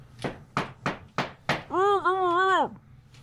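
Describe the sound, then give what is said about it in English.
Five loud, sharp thuds pound on a door in a quick, uneven rhythm, followed by a sustained wavering, whining tone lasting about a second. “Stop hitting the door.”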